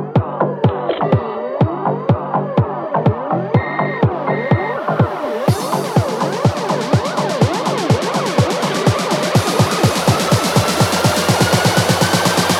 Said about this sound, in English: Sorry, I missed your call. I was dancing to the ringtone.